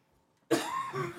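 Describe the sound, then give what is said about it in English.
A single harsh cough bursts out after a brief quiet moment, its rough, breathy noise trailing off over the following second with no talking. “You're coughing as well as I am.”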